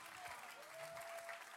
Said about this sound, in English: You know by the clapping here today.